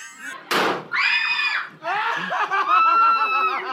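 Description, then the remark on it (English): A sharp impact is followed by a person's loud, high-pitched screams and wails as he is dragged off to hell in a Hell House performance, rising and falling, sustained for several seconds without clear words. “And then he kills himself and is dragged off screaming.”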